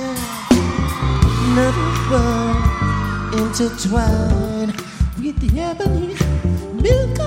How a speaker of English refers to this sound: Very sexy sounding, and I think again that's why the crowd goes wild in parts of this.